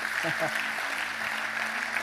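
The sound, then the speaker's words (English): A large church audience claps steadily throughout, a dense wash of applause filling the space, with a brief voice rising over it near the start. “Come on, church, let's clap for everybody that said yes.”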